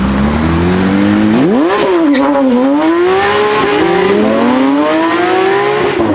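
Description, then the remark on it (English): A sports car engine revs loudly and accelerates, its rising harmonic whine climbing through several gear changes, continuous for several seconds with no talking. “There's just something thrilling about that sound. And that's the point. The sports car comes as an entire package of sights and sounds and smells and feelings that really might be in jeopardy going forward in the future.”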